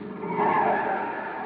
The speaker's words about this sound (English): The chief's on his way down. Yeah, that must be his car now. Oh, no, he couldn't make it this fast. Well, then who is it?